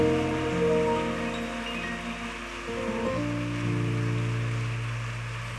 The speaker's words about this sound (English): I would like you to help me celebrate him as a man that has left so much an impact upon us and upon this generation. Is that the best hand clap you can give to him?